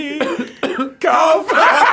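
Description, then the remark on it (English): A person lets out four loud, throaty coughs, each a short, voiced burst. The coughs come in quick succession with brief gaps between them, and no words are spoken. “Makes me wanna cough.”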